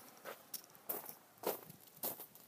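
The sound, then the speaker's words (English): Four footsteps crunch through snow at an even walking pace, each one a brief, gritty, crackling burst. The steps are fairly quiet, with no voices. “Ah, it is the crunchy kind of snow, though.”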